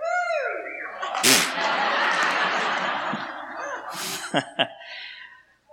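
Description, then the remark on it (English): New England fans in an audience at Hope erupt in loud yelling and cheering for several seconds, a dense roar of voices with whoops and sharp shouts cutting through before it quickly fades out. “So if you're a New England fan, here's your opportunity. Give them a yell.”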